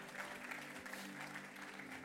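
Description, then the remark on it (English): A church audience claps together in praise of God, a dense, steady wash of applause, loud and sustained for the whole moment, with a faint murmur of voices and a low held tone underneath. “Come on, let's give the Lord a real clap then and a real praise.”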